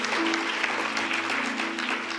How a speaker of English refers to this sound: Come on, clap if you think God's good. There you go.